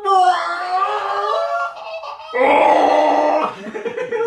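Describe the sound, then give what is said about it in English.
A Sith Lord death screech: two loud, strained vocal cries, the first a wavering drawn-out wail and the second a harsher, rougher scream after a brief pause. “It is what we call a Sith Lord Death Screech.”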